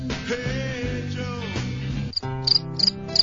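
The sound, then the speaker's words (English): Crickets chirp in quick, regular high-pitched bursts, clearer in the second half, over a steady low tonal drone. No one speaks. “Don't give me crickets.”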